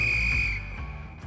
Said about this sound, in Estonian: Lõpuvilega saab jalgpallis otsa higivalamine ja algab kolmas poolaeg.